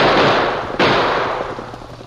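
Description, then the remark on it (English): Two loud, sharp gunshots a bit under a second apart, each bursting out and then trailing off in a long, rumbling decay, with no voices; fired from the saddle as a stallion reared up. “That poor stallion reared right up in front of me and spoiled my aim.”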